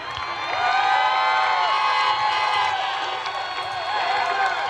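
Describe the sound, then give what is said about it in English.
A large, angry crowd of protesters shouts and yells together in a dense, continuous roar, many voices overlapping loudly and steadily with rising and falling cries throughout. “So the president of the United States just told a crowd, an angry mob screaming, to shut down detention centers for people who are coming here illegally.”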